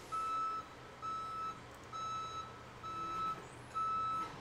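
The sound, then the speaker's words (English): A truck's reversing alarm beeps in a steady, evenly spaced pattern, five long tones over low engine rumble, heard through an open window as trucks back up putting gravel in the driveway of the house next door. “Beep, beep, beep. Can y'all hear the beeps?”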